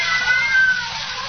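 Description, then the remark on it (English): About half a dozen cats meowing in a drawn-out, wavering cry, fairly loud, with no one talking over it. “Yes, some fiend, knowing her deadly fear of cats, has locked her in here with half a dozen of them.”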